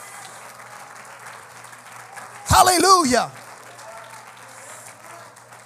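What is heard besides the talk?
audience clapping hands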